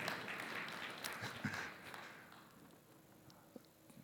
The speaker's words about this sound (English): That wasn't a convincing hand clap.